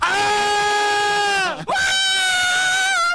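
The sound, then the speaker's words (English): Two loud, drawn-out braying screams in quick succession, each a harsh, piercing animal cry that sags in pitch at its end, with no talking. “If you can hear it, the brays scream.”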